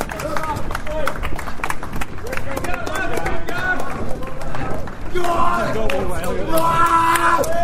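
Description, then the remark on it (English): A crowd claps steadily and cheers as runners arrive into the square at Moot Hall in Cumbria, the runners clapping too, with lively voices and shouts mixed into the continuous applause throughout. “And you're clapping yourselves, you're clapping your mates.”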